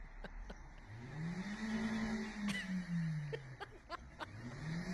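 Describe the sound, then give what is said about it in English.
A stuck front-wheel-drive car's engine revs up hard, holds a strained whine, then drops off before climbing again, with wheels spinning, smoke coming out, and scattered clicks and knocks as a man tries to push and rock the car. “It's front wheel drive. You need to get the wheels on the ground.”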